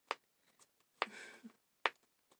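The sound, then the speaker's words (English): Crisp fingernail taps, three sharp clicks spaced apart with a few fainter ticks between them, and a short scratchy rustle following the second tap. No voices. “But the tapping don't sound as well.”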